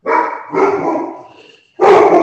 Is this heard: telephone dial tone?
no